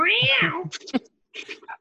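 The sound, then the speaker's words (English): A cat lets out one long, loud meow that bends downward in pitch, followed by a few brief, softer chirps and rustles after a short pause. “I mean, I have a cat. Does that count?”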